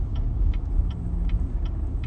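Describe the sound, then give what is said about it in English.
A turn signal clicks in a steady, quick rhythm, about six ticks, over the constant low rumble of a car's engine and road noise from inside the vehicle as it crosses traffic. “Sorry, we just had to do some crazy crossing of traffic.”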